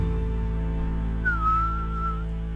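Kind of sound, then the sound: human body sound, person whistling a tune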